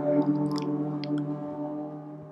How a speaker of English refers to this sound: Ooh, that's Route 1 right outside my window. So if you hear a car or a siren once in a while, that's what it is. And yes, the windows are closed, by the way, ladies and gentlemen.